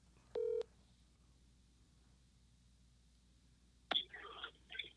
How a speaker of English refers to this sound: We got the phone ringing. Yeah, she's probably not going to answer, but...